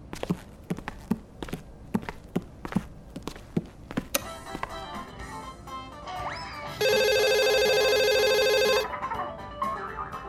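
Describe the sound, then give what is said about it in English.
A telephone rings loudly for about two seconds, a bright, steady electronic trill that follows a run of rhythmic clopping steps and some clattering. “But I'm taking my phone with me in case Dada calls again.”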